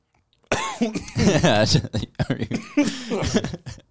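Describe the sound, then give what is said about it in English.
A sudden burst of harsh coughing breaks out, followed by a run of throaty, voiced hacking and sputtering sounds that keep going for a few seconds. “Can you wear a mask or something? You're going to cough, leave the room.”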